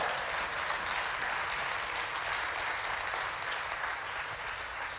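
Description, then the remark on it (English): An audience claps steadily for several seconds, a dense, continuous wash of many hands with no pause, fairly loud and even throughout, no voices standing out. “Come on, if that's you, go ahead and lift your clap your hands one more time.”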